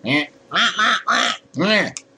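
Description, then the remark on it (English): Human voices imitate duck quacks, four loud nasal quacks in quick, uneven succession, each a short harmonic burst with brief gaps between. “why don't you send us a letter or a tweet or something, and we'll like quack like ducks in your honor or something, huh?”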